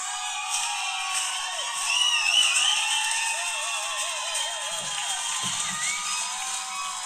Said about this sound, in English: What the fuck was that? That was our audience applauding us. That was the cheapest shit I've ever heard.